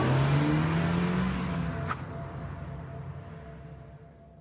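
A parked car's engine revs loudly, then the motor noise steadily fades as the car drives away. No voices are heard.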